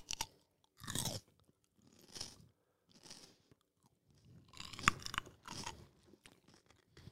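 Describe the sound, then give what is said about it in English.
Crisp crunching and wet chewing of a seedless Persian cucumber, several bites and chews in irregular bursts with short quiet gaps between them, no talking. “These are seedless Persian cucumbers.”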